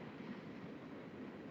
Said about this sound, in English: Here comes a lane train. I got to get a new computer. Get some reliable internet and get away from this damn train.